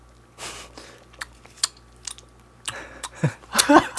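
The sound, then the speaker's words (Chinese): Close, wet chewing and crunching of food, with irregular bursts of mouth noises and bites that grow louder and denser toward the end, no talking. “你再一次， 因为咀嚼声可能是有些人的 trigger。”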